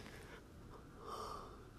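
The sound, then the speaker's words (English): One drawn-out yawn: a breathy intake swelling into a louder, slightly voiced exhale near the end, with no talking. “Oh, excuse me, a yawn caught up with me this morning.”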